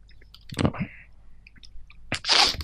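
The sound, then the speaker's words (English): A person imitates a creature's sneeze: two sharp, breathy bursts, the first trailing into a brief nasal tone and the second longer and hissier, both fairly loud. “It makes a sneezing sound, kind of”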